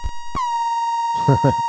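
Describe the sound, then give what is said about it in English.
A sharp electronic click kicks off a steady, buzzy analog synthesizer tone from a 158 oscillator modulated by a Depfer A1472 voltage-controlled LFO, holding at an even pitch, slightly wavering, with a voice briefly talking over it near the end. “So we have an A1472 voltage controlled LFO from Depfer modulating the 158.”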